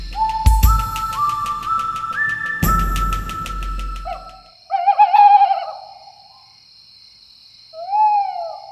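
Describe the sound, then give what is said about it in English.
A voice imitates an owl, giving a couple of wavering, hooting calls, after a burst of rising whistled tones and heavy thuds. No one speaks. “Stop doing that owl impression.”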